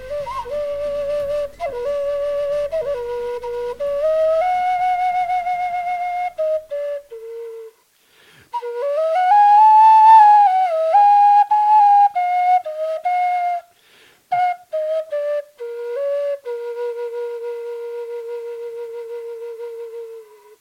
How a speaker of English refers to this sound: Yeah, that was a great welcome whistling.